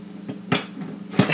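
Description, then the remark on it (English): A toothpick holder is knocked over with a sharp knock, followed about half a second later by another louder clack and a light, scattered rattle of toothpicks spilling out. “I just knocked over a perfectly good toothpick holder. And now there's toothpicks spilled everywhere.”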